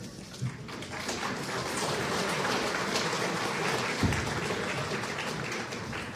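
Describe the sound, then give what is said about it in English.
A crowd applauds steadily for about six seconds, a dense wash of many hands clapping at an even, fairly loud level, with no voices standing out. “Let's give everybody at Balance, please, an applause, folks.”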